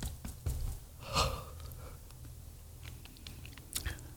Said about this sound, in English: I get relaxed doing the show. When we get relaxed, we yawn.